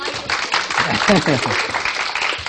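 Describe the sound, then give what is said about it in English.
An audience breaks into steady, dense applause, a continuous wash of many hands clapping, with a few voices calling out underneath. It holds at a fairly even loudness throughout. “And a round of applause.”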